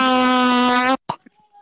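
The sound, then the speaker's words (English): A blaring, heavily distorted siren sound effect holds one harsh steady tone for about a second at very high volume, then cuts off abruptly, leaving a few brief muffled noises. “What do you want, air rape siren?”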